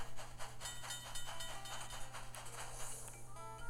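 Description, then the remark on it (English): A video game train rumbles steadily along the tracks with a low engine drone, hissing steam and repeating rhythmic chugs, sounding like a synthesized effect, continuous with no talking. “An enemy train just appeared on the tracks, and he's at the door of the temple, so I have to go the long way around.”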